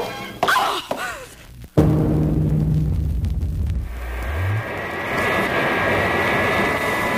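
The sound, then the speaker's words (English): An airplane engine drones loudly and steadily in flight, with a sharp thud early on and a rising mechanical whine before the roar settles into a constant hum. “You there in my plane. Who are you?”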